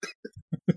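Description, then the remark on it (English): A voice blurts out a quick run of about five short, buzzy fart noises in uneven rhythm, moderately loud, with brief gaps between the sputtering bursts, imitating the farts of the role-play character Cloven. “Clean Cloven farts. Yeah, Cloven farts.”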